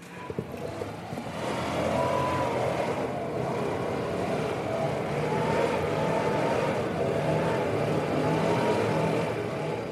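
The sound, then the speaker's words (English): A leaf blower across the street drones on without pause on a Wednesday morning, heard through the windows and walls of a one-bedroom apartment, its small engine giving off a steady, buzzing roar with a faint whine and slight wavering in pitch. No one speaks. “This leaf blower was across the street from where I live, but it still cut through my windows and walls.”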